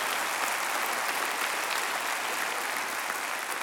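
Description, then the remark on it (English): An audience at a pastor's teaching claps for God, steadily and vigorously, a dense, even wash of many hands that holds at the same strong level throughout without pausing or fading. “Give him the greatest round of applause that you have given all day.”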